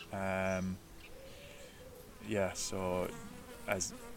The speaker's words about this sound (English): I suppose a little bee. The honey bee is visiting us.